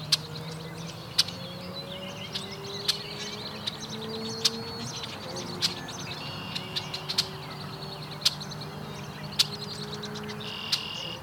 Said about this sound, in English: There's a lot of red-winged blackbirds here today.